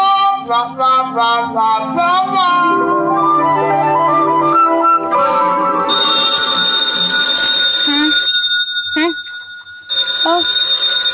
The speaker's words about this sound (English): the telephone. Yes, it's ringing. Well, answer it. It's on your side of the bed.